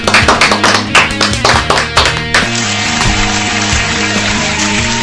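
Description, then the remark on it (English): A quick burst of reversed-sounding claps, each swelling up and cutting off sharply, runs for a couple of seconds before giving way to a steady, sustained tonal drone. “You guys do reverse clap?”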